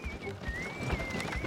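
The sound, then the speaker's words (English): A horse-drawn cart, Dr. Silk's Wagon Apothecary, pulls up outside, its hooves thudding in a few soft, irregular clops beneath a steady, wavering high whistle that runs through the whole moment. “There's a cart pulling up outside.”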